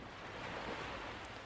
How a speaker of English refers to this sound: And all else you hear is the water against the bows.